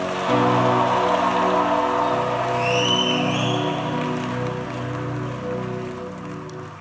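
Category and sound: crowd, audience clapping and cheering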